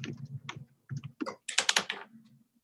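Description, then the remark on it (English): Dice clatter and tumble across a hard tabletop in a quick flurry of dry clicks and rattles lasting a couple of seconds before settling, with no voices; the dice are rolled for a stealth check. “I'm going to switch dice just to make sure the other one hasn't used up all its rolls.”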